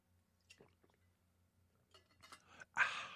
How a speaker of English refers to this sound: Some people, excuse me, I'm trying to get a drink of water.